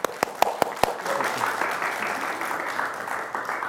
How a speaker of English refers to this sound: Let's give a round of applause for Michael.